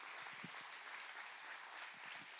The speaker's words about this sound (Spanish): Un aplauso al Señor por la vida de sus hermanos.